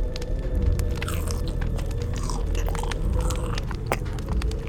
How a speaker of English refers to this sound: What are you eating? It smells great. Barbecued heart.